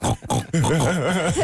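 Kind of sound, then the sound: animal, pig oinking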